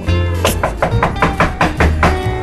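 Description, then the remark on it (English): A rapid series of about eight or nine firm knocks on a door by housekeeping, evenly spaced and fairly loud, over a steady low hum in the background. “wait a minute, is that someone knocking?”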